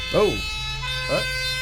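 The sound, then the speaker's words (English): Two brief rising-and-falling ambulance siren wails about a second apart, moderately loud, over a steady tonal hum in the background. “Is an ambulance on the way?”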